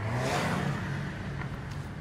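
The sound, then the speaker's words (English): Three cars speed down the center of a two-lane road, chasing an SUV, with a loud, steady engine roar and revving hum that stays constant throughout, with no voices. “Seconds later, a trio of cars whips past us, driving down the center of the two-lane road, going who knows how fast.”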